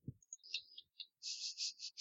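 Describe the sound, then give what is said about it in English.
A low thud, then a quick series of bright plastic clicks and a sustained rattling clatter as dice tumble across a hard table surface during a game, fairly soft, with no voices. “Oh my sweet Jesus, I love these dice tonight.”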